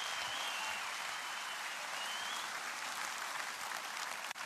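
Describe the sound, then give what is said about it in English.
Steady, dense applause from an audience during a church service, clapping for Jesus: a continuous wash of many hands clapping at an even level with a faint whistle-like tone briefly showing through. “Now, come on, give him a clap.”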